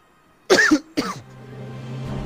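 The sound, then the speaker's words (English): Two harsh coughs burst out back to back, followed by a low lingering throat rasp as the fit trails off, with another small cough starting at the very end. “Oh lord, that cough.”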